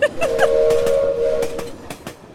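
A train whistle sound effect blows a steady, sustained tone for over a second, layered over the rhythmic clacking of rolling rail cars. Both are fairly loud, with no voices.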